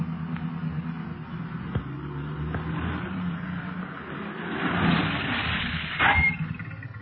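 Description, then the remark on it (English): Several police cars rumble, engine noise swelling as they roll up near a hill, then a short squealing tone as they come to a halt. No one speaks. “The other machines are stopping too”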